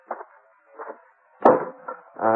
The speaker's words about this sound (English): I opened the back door. I saw somebody cutting up a pile of kindling over near the barn. Whoever it was sure knew how to handle an axe.